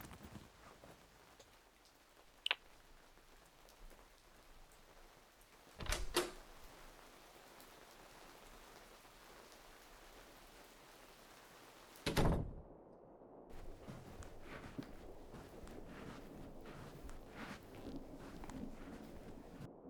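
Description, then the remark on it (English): Rustling of a backpack with a few sharp metallic clinks as keys are pulled out, then a clunk as the door of apartment 212 opens and the background shifts to a fuller hum. “Let me just get my keys from out here.”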